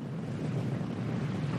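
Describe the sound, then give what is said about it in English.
Steady, blustery wind roars over a rough sea off the coast of Miami, heard aboard the Sybaris, a 70-metre sailing ketch, with waves surging and washing continuously, a dense rumbling wash of sound and no voices. “The sea is a bit rough today, just how he likes it.”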